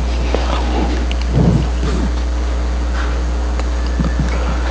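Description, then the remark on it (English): A steady wash of heavy rain with low, rolling thunder rumbling underneath, swelling briefly in the middle and again near the end. No voices. “No, this storm that the disciples faced was massive.”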